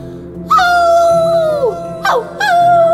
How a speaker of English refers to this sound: You don't wanna howl? You don't have to howl. I'll do it all by myself.